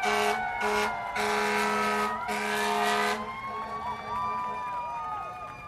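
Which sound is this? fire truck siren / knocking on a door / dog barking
fire truck siren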